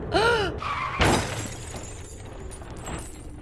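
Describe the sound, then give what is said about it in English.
A short squeal gives way to a loud crash of crunching metal and shattering glass, followed by scattered debris settling: a car crashing into the back end of another car, with no voices. “I mean, you crashed into us. Look at that damage.”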